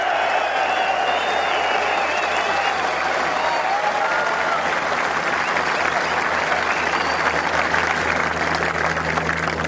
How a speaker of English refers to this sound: You'd call that warm applause, wouldn't you? Warm applause, good reception.